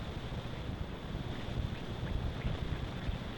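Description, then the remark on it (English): An Alka-Seltzer tablet fizzes in water, a steady, dense crackling hiss with tiny popping bubbles that holds even for a few seconds, heard alone without any voices. “Listen to it fizz.”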